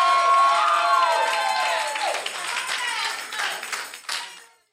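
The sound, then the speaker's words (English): A crowd erupts in loud screams and cheers, many voices overlapping with some clapping, starting at full intensity and gradually tapering off over a few seconds. “Somebody scream in this place.”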